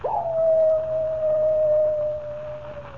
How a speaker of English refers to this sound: Does the howl of the coyote really spell death for Comanche Joe?